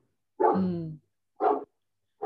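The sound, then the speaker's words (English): A mixed-breed dog (a Bitzer) barks three separate barks: a longer, drawn-out first bark followed by two shorter, sharp ones spaced about a second apart, with silence between and no talking. “What kind of dog have you got? It's a Bitzer.”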